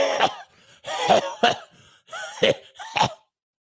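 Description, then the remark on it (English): A voice imitates a coughing fit: five harsh coughs in an irregular rhythm, with raspy, strained vocal sounds between them, over a few seconds. “You know, you get you a sugar mama and she coughing all night long.”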